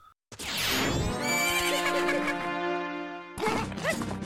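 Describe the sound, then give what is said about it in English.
Epona, Link's horse in a video game, being stolen by the Skull Kid, lets out a loud, drawn-out whinny with a rising then wavering pitch, followed by a brief burst of clattering or scuffling noise at the end. “Link attempts to save his trusty horse and is dragged through the forest before being forced to continue the chase on foot.”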